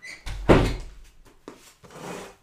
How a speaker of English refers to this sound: Let me shut my door because my cat is walking down the hallway. I can literally hear her little baby nails. Hi, Abby. No. Hold on. Let me close the door.